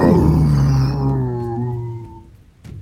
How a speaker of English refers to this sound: you hear a deep guttural growl from the rooftop above you as one of these hellhounds makes its way to the edge and looks down on you and then howls again.